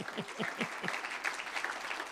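audience clapping

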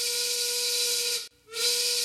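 train whistle sound effect

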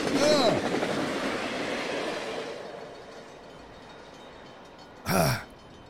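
train sound effect

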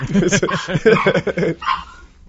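small yappy dog barking

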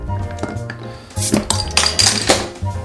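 glasses clinking

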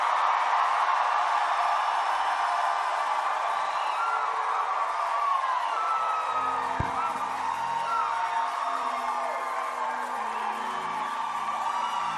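audience shouting in praise

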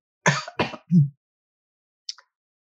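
coughing

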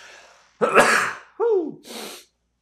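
a sneeze

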